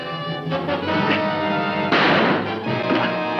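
A loud smashing crash, the fly smashing anything that stands in his way in The Return of the Fly, bursts in partway through over a dense, dramatic music bed, followed by a rumbling, clattering tail and more dull impacts.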